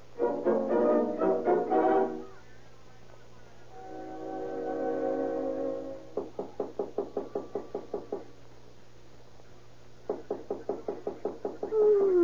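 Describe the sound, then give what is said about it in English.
Two bursts of rapid, evenly spaced, loud knocking on a door at 3:30 at night, following a stretch of humming tonal sound. Each burst holds around ten sharp raps. “There's a somebody knock on the door.”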